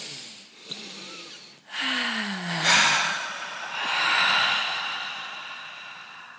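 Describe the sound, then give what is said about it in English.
A slow, deep breath drawn in through the nose and then let out in a long, audible sigh, with no talking. “Take a breath.”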